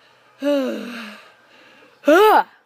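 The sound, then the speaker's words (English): A loud, vocalized yawn deliberately made into a phone, long and drawn out with a sliding pitch, followed after a pause by a shorter voiced exhale. “Yeah, I purposely yawned into the phone to make you guys mad.”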